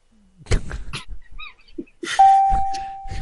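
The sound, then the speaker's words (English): After a second or two of scattered bumps and rustling noises, a single bright bell chime rings out loudly, its tone ringing on steadily until the end. “That's the right bell. They got a button instead.”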